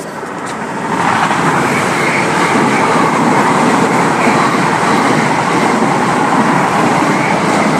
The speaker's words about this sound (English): That may indeed be the last London Overground service that I go on for this trip.